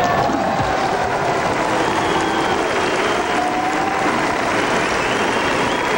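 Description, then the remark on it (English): A large crowd at the 1995 NHL draft in Edmonton shouts and cheers amid steady applause as the Edmonton Oilers select Steve Kelly from the Prince Albert Raiders. It is a loud, dense roar that holds at an even level for the whole six seconds, with no clear single voice. “The shouting was for Dome, but it's Steve Kelly, and they get a good one.”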